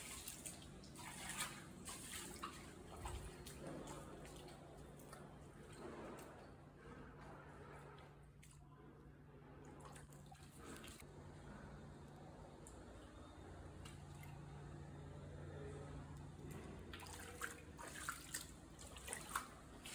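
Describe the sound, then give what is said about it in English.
Floodwater from a deluge rushes and pours steadily for the whole stretch, loud, with a low, constant mechanical hum running underneath from early on. “And here's a quick video, if you haven't seen it already, here's a quick video of just the deluge, the fun, but the work that went on as well.”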